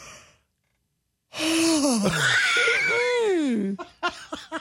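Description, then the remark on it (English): A voice imitates an insurance company phone agent's long, exaggerated yawn during a call, starting with a sharp heavy intake of breath and sliding through drawn-out falling and wavering tones before trailing off in a few soft breathy bursts. “She yawns right in your ear.”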